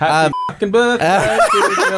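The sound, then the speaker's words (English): A short, steady, high-pitched censor bleep covers swearing for about a quarter second between bursts of lively, laughing talk, with voices resuming right after. “Well, I'll make sure I fucking bleep the shit out of it.”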